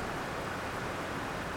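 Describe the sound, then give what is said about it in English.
Rain falls at Transplanted Traditions in a steady, even hiss with no breaks or distinct drops standing out, a soft wash of noise that stays at the same level throughout, with no voices. “I am here at Transplanted Traditions, and right now we are hearing the rain,”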